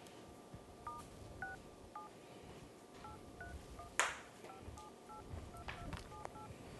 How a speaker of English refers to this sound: People might like be able to tell what your phone number is based off of those tones. No, they have different tones.